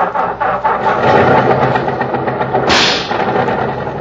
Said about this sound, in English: Gotta do something about that ping in the engine. I think it could use a little bicarbonate if you ask.